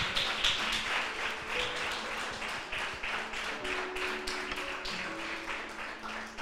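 audience applauding

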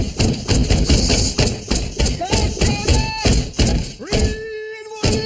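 hammering

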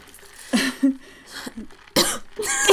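coughing into the microphone

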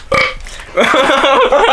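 burp

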